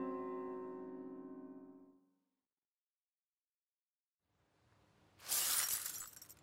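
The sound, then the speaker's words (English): A mirror, knocked over from where it leaned against a counter, crashes onto a hard floor and shatters, a loud, bright burst of breaking glass after a brief rumble, preceded by a sustained tone that fades into silence. “It smacked onto the floor and... Ugh. 7 years bad luck, is it?”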